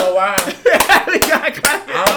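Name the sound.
hand clapping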